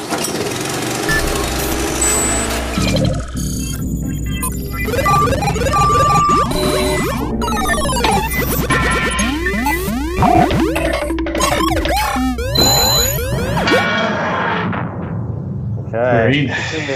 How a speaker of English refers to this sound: This is the randomizer machine which puts them all into the drawer. And you just have to hope that some of your favorites don't come up against each other too early. But it's all up to the randomizer.